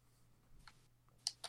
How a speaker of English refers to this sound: He's typing in the chat. He might be saying, time to die.